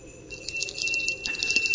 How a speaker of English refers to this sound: Yeah, this is my anime Christmas bell. Very nice.